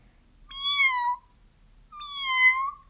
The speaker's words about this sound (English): "Meow, meow, meow, hungry," said the hundreds of cats, thousands of cats, millions and billions and trillions of cats.